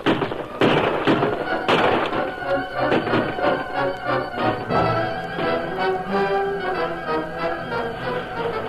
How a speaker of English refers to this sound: Flashes of burning powder speckled the darkness of the woods as the bad men poured a hail of bullets against the stockade. The heavy fire forced the defenders to leave the rear unguarded to meet the threatened assault.